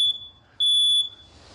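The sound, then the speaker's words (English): A smoke alarm in a home library chirps twice for a low battery, loud: a brief shrill electronic beep, a short pause, then a longer piercing tone, with no voices. “It's like I just had a fire alarm go off in my house while I'm talking.”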